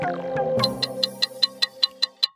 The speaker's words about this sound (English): Hear that? That's the clock counting down to the Brisbane 2032 Olympic and Paralympic Games, which, if you can believe it, are only 10 years away.